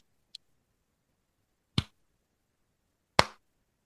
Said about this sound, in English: was doing the slow clap like he was the Joker in The Dark Knight.